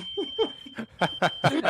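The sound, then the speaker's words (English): A fire alarm sounds a steady, shrill high-pitched tone in the background, running continuously while people break into repeated bursts of laughter over it. “Yeah, the alarm went off because his trading account is just that hot.”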